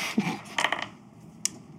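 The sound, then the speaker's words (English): A handful of dice clatter briefly, with a cluster of quick clicking rattles early on, then a final sharp click a moment later, moderately quiet. “For now, I'll roll a handful here.”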